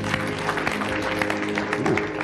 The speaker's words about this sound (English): If you believe that the word of God is rich, clap your hands for God.